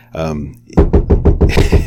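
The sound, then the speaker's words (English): A brief voiced sound, then knuckles rap on a table about seven times in quick, steady succession, fairly loud, knocking in enthusiastic agreement. “I'm knocking on the table with enthusiastic agreement.”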